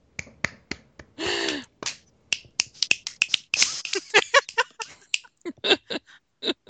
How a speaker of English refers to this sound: That should be a really slow clap that builds to a massive applause.